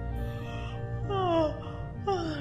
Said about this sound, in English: What's the matter with me? I can't stop yawning.